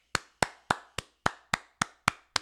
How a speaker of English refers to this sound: I'm just going to assume it's true and applaud it.